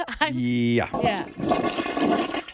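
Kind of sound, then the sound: household object, toilet flushing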